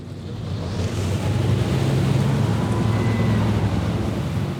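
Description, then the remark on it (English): Boat engines are gunned by angry workers at a fish farm trying to block another boat, droning low and loud on open water, their steady roar mixed with rushing wind and splashing waves, with no one speaking. “At a fish farm, angry workers gunned their engines and tried to block us.”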